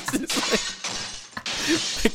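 Glass display cases being smashed, with repeated loud, bright crashes and showers of shattering shards in quick succession, and scattered tinkling debris between the impacts.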